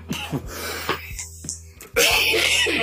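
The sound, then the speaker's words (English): A few rough, phlegmy coughs and throat rasps, followed by a burst of loud, steady hissing noise. “The rattle. The death rattle.”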